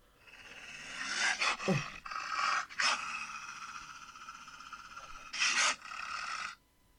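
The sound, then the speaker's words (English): A wolf pants and growls, a continuous run of rough, breathy rasps with a few louder surges, lasting several seconds before cutting off abruptly. “You like wolves, don't you?”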